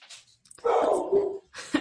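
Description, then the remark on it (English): A dog barks in the house, one drawn-out, slightly whiny bark lasting under a second, moderately loud, with short bursts of hissy noise before and after. “Well, it sounds like I have a dog barking in the house too.”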